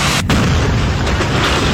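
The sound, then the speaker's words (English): A loud, sustained explosion as a truck is blown up, a deep roaring rumble filling the whole clip after a brief dip at the start, with no voices. “They blew up a truck.”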